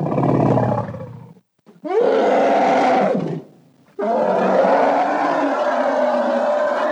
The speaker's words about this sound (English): Up next, we got the Rancor growls. Ooh.